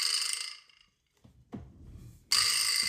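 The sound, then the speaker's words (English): A vibraslap, held by one person and hit by another, is struck twice, each hit giving a loud, buzzy metallic rattle. The first rattle fades out over about half a second, and after a quiet gap a second sharp hit rattles on strongly. “It's called a vibraslap.”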